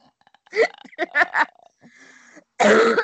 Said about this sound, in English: You're making me cough. Damn, that's a strong cough you got there. COVID. It's not COVID. It's called being a chronic pot smoker.